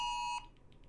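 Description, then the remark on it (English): A loud, steady electronic alert tone with a pure pitch and bright overtones, holding for a moment and then cutting off, followed by faint softer blips: a phone test of Emergency Alerts, the UK government's warning service. “This is a test of emergency alerts, a new UK government service that will warn you if there is a life-threatening emergency nearby.”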